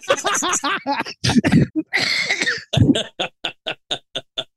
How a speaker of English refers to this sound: Gross. Ooh, you okay? Yeah, you made me cough up a little bit.